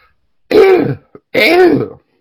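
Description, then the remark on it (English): A voice imitates a made-up cough, said to sound like a dinosaur from Jurassic Park, with two loud, harsh, raspy bursts separated by a brief pause and a tiny click, with no other talking. “That's the cough that I made up, but it sounds really similar to the, okay.”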